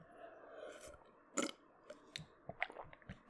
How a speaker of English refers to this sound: And now I'm going to drink some water and you motherfuckers going to listen.